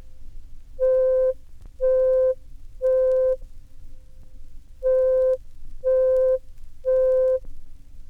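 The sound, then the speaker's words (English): A synthesizer sounds the note C5 at 523 cycles per second, the fifth C from the left on a piano keyboard, six times: a steady, clear electronic tone in two groups of three evenly spaced beeps, each about half a second long, with a short pause between the groups. “By increasing it to 523 cycles per second, we hear C sub 5, which is the fifth C starting from the left on the piano keyboard.”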